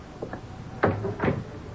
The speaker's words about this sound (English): Close the door, please.